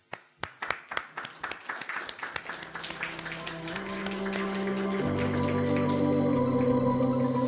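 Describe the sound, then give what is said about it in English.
Hand clapping, given in gratitude to the audience at the end of a speech, begins as a few sharp, separate claps and quickly swells into steady, dense applause, while a sustained musical tone rises underneath and grows louder toward the end. “But it's me that would like to clap in gratitude for all of you that come today.”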